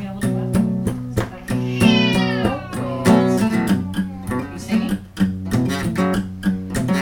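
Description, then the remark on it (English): A cat meows in a couple of drawn-out, wavering cries that rise and fall, heard over a steady rhythmic musical backing with a regular beat. “Cat calls.”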